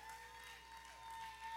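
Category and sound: crowd, audience clapping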